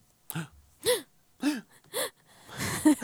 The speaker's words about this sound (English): Gasp!